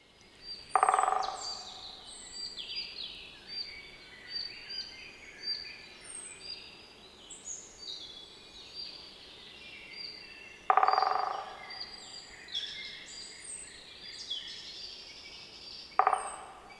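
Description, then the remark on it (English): Great spotted woodpecker calls: three loud, sharp single 'kik' notes spaced several seconds apart, with softer birdsong twittering steadily in the background. “Male great-spotted woodpeckers have a red patch on the nape, which distinguishes them from the females.”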